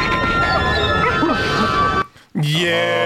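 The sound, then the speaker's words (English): A dog barks and whimpers amid a busy, cluttered background, then after a brief pause lets out a loud, drawn-out whining yelp close by. “You're the best hunting dog in the whole world, Smiley.”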